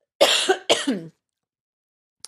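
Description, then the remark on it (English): Two quick, harsh coughs in close succession, loud, followed by silence and a faint click at the very end. “excuse me, I need to cough.”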